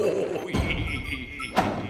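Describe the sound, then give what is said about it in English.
Heavy stomping thuds from giant robot teddy bears, two deep booming impacts about a second apart over a low rumbling, crunching background as they knock over trees while stomping through the woods. “You mean the way they're knocking over the trees as they come stomping through the woods?”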